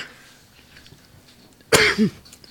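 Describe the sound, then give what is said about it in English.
A single sharp cough bursts out, followed by a short rough throaty rasp, after a couple of seconds of quiet room tone. “Stupid cough won't go away.”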